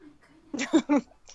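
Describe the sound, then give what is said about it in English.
A cat gives two or three quick meows in a row as she tries to throw herself out of a window, loud against a quiet background, then falls silent. “Oh, and now my cat is trying to throw herself out of my window.”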